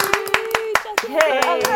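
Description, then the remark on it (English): Hands clap in a quick, steady rhythm, roughly nine sharp claps, while a voice carries on underneath the clapping. “Let's clap again and scare my dog because he's going to come running.”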